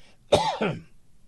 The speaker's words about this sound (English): Excuse me, that cholera is really acting up. I don't have a cough button, so.